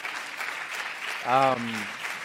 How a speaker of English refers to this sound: And so, yeah, clap it up.